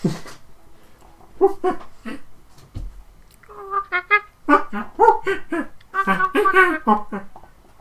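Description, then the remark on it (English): A person makes monkey noises at a live monkey that is hopping around, with a run of high, wavering hoots and squeaky whimpers in uneven bursts, growing busier and louder toward the end. “making monkey noises at this actual monkey who is hopping around cheerfully.”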